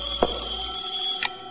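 An old telephone bell rings steadily and loudly, a continuous metallic trill held for the whole moment, with two brief knocks breaking in, and no one speaking.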